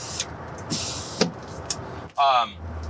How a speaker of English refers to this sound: It just feels like my truck's so loud.